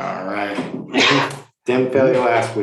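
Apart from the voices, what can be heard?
sneeze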